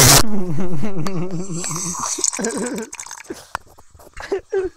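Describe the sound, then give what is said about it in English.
A person chokes on water: a voice gurgles and sputters wetly, with a wavering strained tone that breaks into a few short coughing gasps toward the end. “I was choked on the water.”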